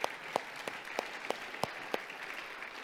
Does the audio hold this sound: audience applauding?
yes